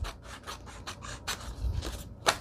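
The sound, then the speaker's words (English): Scissors snip through paper, trimming close around an image, in a quick series of about eight crisp, raspy cuts, coming in an uneven rhythm with short pauses. The cutting is fairly quiet, and no one speaks. “And I think I'm going to do a little trimming. Locating scissors.”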